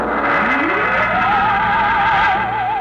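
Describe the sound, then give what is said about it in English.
Dense rumble of scuttling trucks and jeeps on a vast concrete strip at Dry Wells, Texas, among cranes and loading machinery around a rocket, fills the scene at steady loudness, while a rising tone sweeps up and settles into a warbling whine above it. “On the vast concrete strip at Dry Wells, Texas, the form of the rocket towers above the cranes, the loading machinery, and the scuttling trucks and jeeps.”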